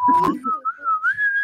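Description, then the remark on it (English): A person whistles a short, cheerful tune, a clear single tone sliding gently up and down in pitch, with a brief breathy burst near the start. “Me whistling all happy day.”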